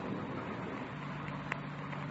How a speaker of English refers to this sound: The car coming up the road toward us, sounds like. Yeah. Wait a minute. Coming over this way. Yeah, sounds that way, doesn't it?